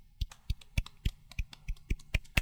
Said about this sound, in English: Let's give them a slow golf clap for that one.